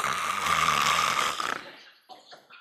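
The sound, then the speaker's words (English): A voice imitates a CPAP mask at night: one long, loud, breathy rasping hiss with a steady whistling tone, then a softer fading exhale with faint sputtering puffs. “I got one of those CPAP masks. You put that bad boy on, and all you hear the rest of the night is this.”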